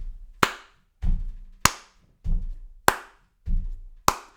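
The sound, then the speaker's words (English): Classroom body percussion in a steady alternating pattern read from shapes, square for stomp and triangle for clap: low, thudding foot stomps trade off with sharp, bright hand claps, about four claps and three stomps, with no talking. “So if I did square, triangle, square, triangle, square, triangle, that's stomp, clap.”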